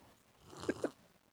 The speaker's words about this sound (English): Let me take a sip first.